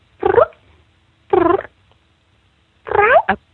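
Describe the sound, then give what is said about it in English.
A person imitates a mother cat's soft cooing call, used when bringing food to kittens to get them to come: three short, trilling, rising calls spaced by brief pauses, with no other sound. “right now we're ready to learn how to act, how to sound like a mama cat, and get the kittens to come to you.”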